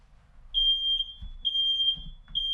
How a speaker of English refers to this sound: Well, thanks a lot, KangerTech, for setting off my fire alarm.